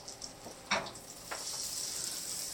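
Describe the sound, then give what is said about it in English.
An egg frying in a pan: a steady, bright sizzle with sharp crackles and pops scattered through it, the hiss swelling and holding after the first second. No one speaks. “beg him to fry you an egg under the pretext that you need to record it, you know, for the audio”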